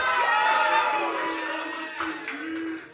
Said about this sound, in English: Yeah, just a big round of applause for the LSD teens. They're the real heroes out here.